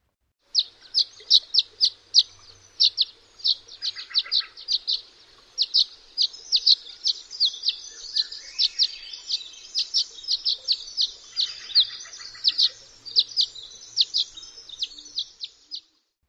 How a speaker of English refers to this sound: And so their song matches and is a little prettier and softer. Although I think all the swallows are pretty. It's just a silly way to remember. So one more time, here is the violet green swallow.